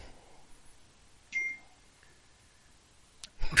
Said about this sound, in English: Whoever's got that bell going, can I just say, don't stop it, it's brilliant. That was perfectly perfect timing.